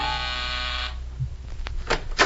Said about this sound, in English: So what happens next? A buzz happens. A gentle buzzing at my door.